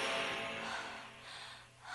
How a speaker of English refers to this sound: Wait, I think they do some heavy breathing in this part coming up. Mm-hmm. It's a sexy song.